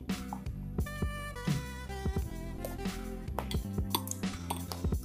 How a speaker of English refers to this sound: So I'm using a spoon to scoop up the chocolate chips I poured in my milk drink here. It's like eating and drinking at the same time.